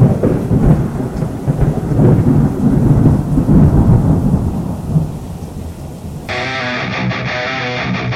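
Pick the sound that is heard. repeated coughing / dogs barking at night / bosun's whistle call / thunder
thunder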